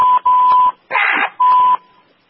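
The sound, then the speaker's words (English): A steady, mid-high censor bleep tone sounds in a few short bursts, a longer one first, then a brief rough, noisy blast, then one more bleep before it fades out. “you know that little bleep you make when you're going to say a bad word?”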